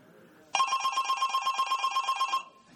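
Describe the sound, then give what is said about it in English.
A telephone bell rings loud in one sustained burst of just under two seconds, its rapid metallic clatter ringing out clearly with no voices over it. “Do you hear the phone ring?”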